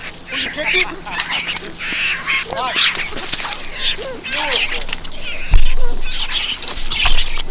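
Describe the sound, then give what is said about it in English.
A bird honks and squawks repeatedly in loud, uneven bursts amid a busy commotion of rustling, thumps and indistinct voices. “Get the bird! Get the bird!”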